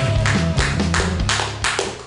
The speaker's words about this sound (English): They're still clapping wildly.